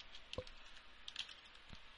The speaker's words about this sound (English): I'm sorry, I'm still typing and I shouldn't be